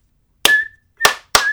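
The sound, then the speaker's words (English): Three sharp hand claps, a 'Noya clap', with no one talking, the first standing alone and the last two coming closer together, each leaving a short, slightly ringing tail. “We're going to give a round of applause, a little...”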